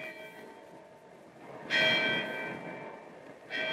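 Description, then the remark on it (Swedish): The bell of the old Östermalm church in Stockholm begins striking nine on an autumn evening at dusk, with slow, resonant strokes, two of them here, each ringing out and lingering as it fades. No voices, just the bell against a quiet background. “Skymningen hade redan sänkt sig över staden och den gamla Östermalmskyrkans klocka började just slå 9.”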